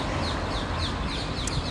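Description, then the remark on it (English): Birds chirp in a quick, steady series of short, high calls, repeating about every third of a second over a constant wash of outdoor background noise. “Oh, birds.”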